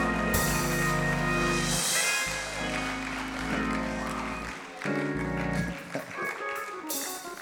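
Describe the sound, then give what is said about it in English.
An audience claps their hands as a steady wash over loud music with deep sustained bass notes, the clapping swelling strongest at the start and again at the very end. “Ah, let's clap our hands.”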